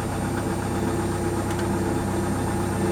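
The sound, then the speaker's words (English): A car engine idles after its field coil has been tightened, with a steady, low, rumbling purr that holds an even pulse throughout, fairly loud and uninterrupted, with no voices. “Hey, now, will you listen to that baby purr?”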